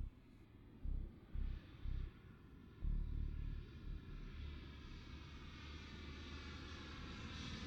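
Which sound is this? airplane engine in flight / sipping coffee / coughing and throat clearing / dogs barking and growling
airplane engine in flight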